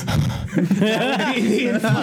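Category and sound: vocal imitation, voice imitating heavy breathing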